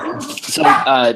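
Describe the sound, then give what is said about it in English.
Pet dogs bark in a quick burst of high, whiny yips and yelps that run together for about a second, fairly loud and with no other sound around them. “So just to reiterate the question, so that can we all now hear my dogs barking?”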